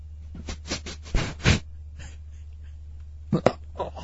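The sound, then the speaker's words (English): A person sniffs a leather chair seat repeatedly: short, breathy bursts in quick clusters, a few sharper and louder, with brief pauses between, over a low steady hum and no talking. “Sniff it like you're a dog.”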